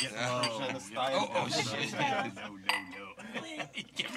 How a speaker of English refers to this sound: We're going cheers. Lower and lower with our clinking.